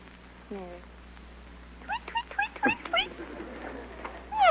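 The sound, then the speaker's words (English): A human voice mimics a canary with a quick run of five or six high, bright chirps, then starts a cat-like meow at the end, fairly loud, as a sound effect for the picture title The Cat and the Canary. “Canary. Tweet, tweet, tweet, tweet, tweet. Meow.”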